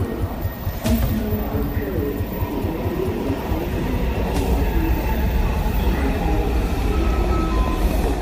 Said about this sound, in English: Then the subway.